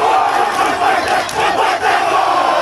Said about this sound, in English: Haka? Yeah, BYU football team used to do this.